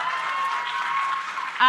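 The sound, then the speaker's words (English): An audience at a live show claps steadily in a dense, continuous wash of applause for under two seconds, holding an even loudness before a brief louder swell right at the end. “Round of applause if you are one of our beloved Patreons.”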